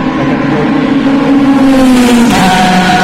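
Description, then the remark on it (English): A Ferrari race car screams past at speed down the start-finish straight of a race circuit, its loud, high engine note holding steady before the pitch drops sharply as it goes by, with no voices. “That was a Ferrari.”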